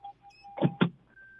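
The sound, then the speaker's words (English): A car's door-open warning chime dings repeatedly, interrupted by two quick mechanical clunks, then a steady electronic tone hums on. Fairly clear, with no talking. “Now, is your car door open? Because we can hear all that.”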